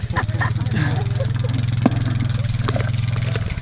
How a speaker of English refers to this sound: This is the first year we've had the irrigation pump hooked up electric. We've had all gasoline engines before.